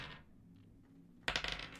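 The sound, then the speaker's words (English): After a moment of near silence, dice rolled for investigation checks in a tabletop role-playing game clatter onto a tabletop in a sudden burst of sharp, rapid clicks, fairly loud, tumbling briefly before settling. “You guys can roll investigation checks as you look through the ship.”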